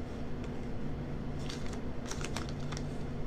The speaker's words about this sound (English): All right, here's another ripped piece of paper.